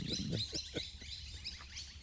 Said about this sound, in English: Hear all the birds, they're going crazy. Right this moment, yeah.